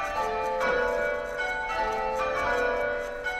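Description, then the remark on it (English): Church bells peal in a steady, overlapping sequence, their bright ringing tones and lingering hum filling the space, loud with no voices present. “The bells are loud.”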